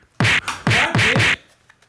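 A voice imitates a thrown pen striking something with a quick series of four loud, hissy whooshing bursts, each starting with a low vocal thump, followed by quiet.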